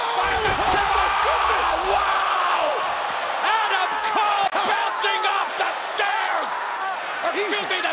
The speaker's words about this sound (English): Aleister Black reverses him, and then a withering slam. Basically, his spine is broken. It's really gross. He lands on the chair the way that he wanted to do it to Aleister Black, and everybody's chanting, "You deserved it."